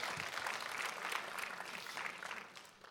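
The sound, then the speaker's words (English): An audience claps steadily for a drama team, a dense wash of many hands at an even, lively level that tapers off slightly near the end. “Let's give our drama team a big clap.”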